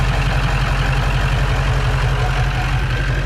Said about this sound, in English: Diesel. I think we know that. Yeah, it's a big, sounds like a big rig.